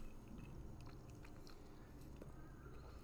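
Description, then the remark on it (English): Wet chewing of a tough, fibrous piece of vegetable, with steady crunching and mouth noises continuing throughout, no talking. “I've been trying to chew a piece of food for a good little minute that refuses to go down.”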